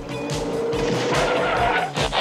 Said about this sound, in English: Look out, a car!